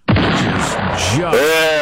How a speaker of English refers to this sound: Is that our sound effects now for the West Coast bomb explosion update? Bomb explosion. I almost want to have the bomb before the explosion.